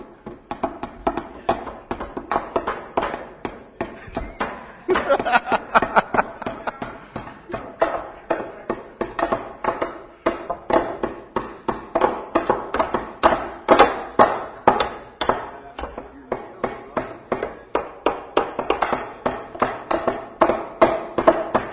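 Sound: hammering nails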